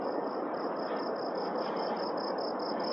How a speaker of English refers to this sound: Now, those are frogs. Not crickets, I think.